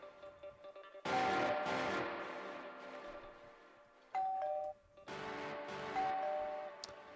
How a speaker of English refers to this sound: can you get me a doorbell sound?